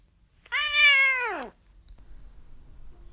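A single drawn-out meow from the cat Duarte, fairly loud, rising slightly then sliding down in pitch over about a second, followed by quiet background noise.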